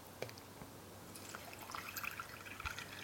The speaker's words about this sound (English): You could go to the top of the glass, depending how much water you want in there. And then you add some sparkling water or soda water.